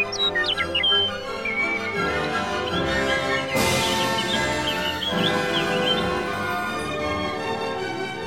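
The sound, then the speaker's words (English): Birds chirp and sing in quick high tweets, clearest near the start and scattered throughout, layered over a steady, full musical backdrop at moderate loudness. “In fact, Hansel and Gretel and their father never again ate another meal without sharing it with the birds who'd sung them safely home.”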